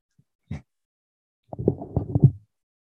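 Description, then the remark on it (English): A microphone being handled: one brief muffled bump, then about a second of low thumping and rustling bumps. There is no talking. “I'm shuffling the mic.”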